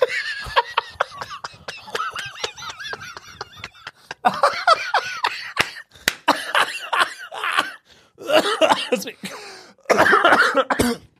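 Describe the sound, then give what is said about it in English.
A loud coughing fit: rapid strings of harsh coughs coming in bursts with brief pauses between, mixed with breathy, strained laughter. “That made me cough.”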